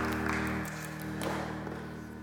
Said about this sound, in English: Come on and give God a hand clap of praise for that. Yes. Amen.